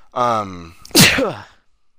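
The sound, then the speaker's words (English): One loud sneeze: a drawn-out voiced 'ahh' build-up followed by a sharp, breathy burst that trails off quickly, with no talking around it. “I had it muted because I was about to sneeze, but then you said Seth MacFarlane, so I wanted to go, so I unmuted it, but I sneezed”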